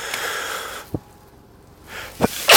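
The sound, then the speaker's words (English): A single sneeze, caused by having a Christmas tree in the house, with breathy inhaling and a couple of small catches leading up to a sudden burst at the end. No one speaks. “Sneeze from having a Christmas tree in my house.”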